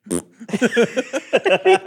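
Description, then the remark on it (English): A voice imitates a fart with a quick string of short, sputtering bursts, about eight pops in rapid staccato rhythm, loud, with no spoken words. “But it's always so staccato and loud.”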